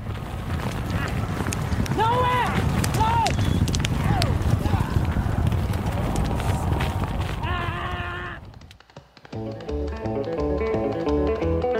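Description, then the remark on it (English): Racehorses gallop on a track, a dense rumble of pounding hooves with jockeys loudly yelling and screaming at each other over it; after about eight seconds the galloping cuts off and a rhythmic tonal music passage takes over. “I know you can hear the jockeys yelling and screaming at each other, especially when they get tight on a turn.”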